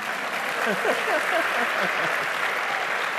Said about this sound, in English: And now I know the messages are being recorded, so in just in case Jeff listens to it, we want to make him think that you all really miss him. So clap your hands for Jeff Jakes, your pastor.